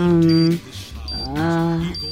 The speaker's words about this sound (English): It sounds like the beeping's coming from you.